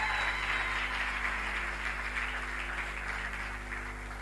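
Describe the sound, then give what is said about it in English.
An audience claps hands for Major Prophet Bushiri, founder of ECG, in a steady, dense wash of applause that holds for the whole stretch, fairly soft overall, with a low electrical hum underneath and no voices. “You can clap hands better than that.”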